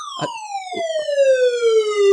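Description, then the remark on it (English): A weather radio emergency alert sounds, the first time this radio has ever gone off: a loud, buzzy electronic tone that glides slowly and steadily downward in pitch, with a few brief noisy bumps early on and no one talking. “I have a weather radio. That's the first time it's ever gone off.”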